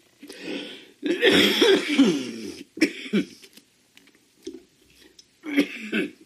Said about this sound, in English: I'm committed to putting this out, so you're going to have to endure the cough. I'm enduring it too.